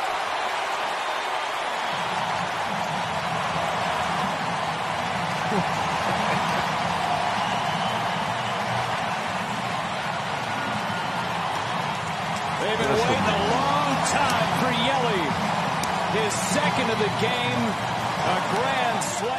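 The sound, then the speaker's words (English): A loud stadium crowd of some 37,000 cheers in a sustained, roaring wash of noise that never drops away, swelling further partway through as voices shout and call out above the din. “That's listen crazy to that loud. Crowd.”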